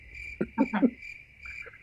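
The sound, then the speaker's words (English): Crickets chirp in a steady, continuous high trill, with a few brief muffled thumps near the start and no one speaking. “Insert cricket noises here.”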